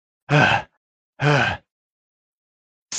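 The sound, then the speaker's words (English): A voice imitates heavy panting: two loud, breathy, voiced gasps about a second apart, then a third starting at the very end. No words are spoken. “She's last. She's panting.”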